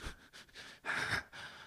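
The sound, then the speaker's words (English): A voice imitates a woman's heavy, intense breathing as she sweeps: several forceful, breathy huffs in quick succession, with one longer, louder exhale in the middle, fairly quiet overall. “She's breathing all intense.”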